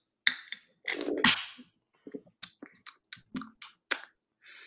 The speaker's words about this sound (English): Crack it open. Abita Purple Haze. Take a sip.